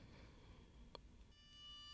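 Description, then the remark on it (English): A soft click, then a steady reference pitch note from a Google smart speaker sounds faintly in the last stretch, holding one even tone against a quiet hum. “I just want to play a note, Google.”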